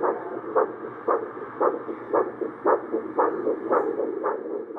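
A rapid, steady heartbeat thumps about twice a second through a muffled, whooshing background, heard through a stethoscope, with no one speaking.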